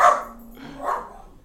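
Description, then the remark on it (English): A dog barks twice in quick succession at neighbors playing fetch, two sharp, fairly loud woofs about a second apart, with no talking. “He's mad because the neighbors are playing.”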